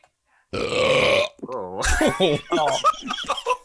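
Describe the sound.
A single long, loud, gravelly burp drawn out like the MGM lion's roar for nearly a second, followed at once by laughter and excited voices.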